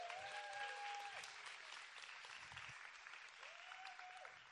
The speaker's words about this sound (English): Clap for her while she comes.